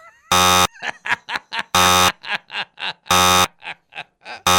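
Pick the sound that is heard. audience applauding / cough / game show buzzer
game show buzzer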